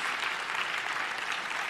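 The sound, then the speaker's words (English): An audience in a full building claps in a dense, steady round of applause for everyone watching online. The applause fills the whole moment at an even loudness, with a crowd cheer blended into the wash of many hands. “Let's just give a quick cheer and a round of applause to everyone online.”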